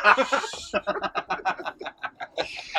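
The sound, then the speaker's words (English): A goose honks in a quick, rhythmic run of about a dozen nasal calls, fairly loud, with no other sound around it. “Goose agrees.”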